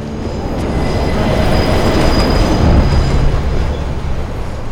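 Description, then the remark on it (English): A 6 train on the subway rumbles steadily along the tracks, a loud, continuous low roar with a faint high metallic whine riding above it, heard while riding on board with no talking. “We're on the 6th train, where I first saw those little shits. Just riding up and down, looking.”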